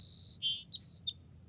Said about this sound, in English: The wetlands are home to many bird species, like this marsh wren.